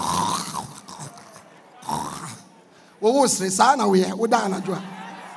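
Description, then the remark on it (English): A voice imitates heavy snoring: a couple of rasping snores with pauses between, then a louder stretch of guttural, snorting breaths and groans, fairly loud. “was deeply asleep, snoring.”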